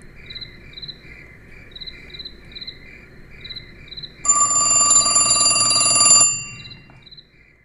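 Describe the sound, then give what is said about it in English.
A telephone rings late at night with a loud, two-second burst of rattling bell. Steady cricket chirps fill the night air before and after it, with no voices. “but I do remember here and there, in those early years, late at night, hearing that phone ring.”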